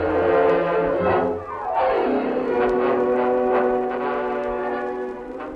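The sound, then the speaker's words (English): A train's whistle blows loud, a long sustained chord that bends downward in pitch midway, over a steady rumble of the approaching train. No one speaks. “There's the train, Sam.”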